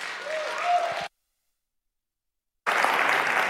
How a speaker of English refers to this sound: a big round of applause